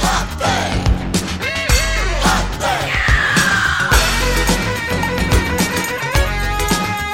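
A singer's high, sustained scream slides downward midway through a loud, dense band recording, cutting briefly above the driving drums and instruments before the music carries on; the scream is lifted from further in the song and edited in to cover a cut.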